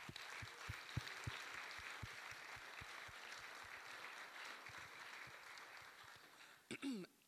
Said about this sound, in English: So if we could, this is kind of one of the few Sundays they get off in a year. As a small token of appreciation, can we give our worship band a round of applause?